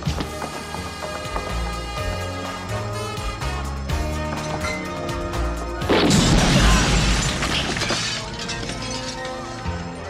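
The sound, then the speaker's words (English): A big gas explosion erupts into a loud, deep roaring blast that rumbles for a couple of seconds, preceded and followed by a dense clatter of shattering glass and crashing debris. “There's a major gas explosion.”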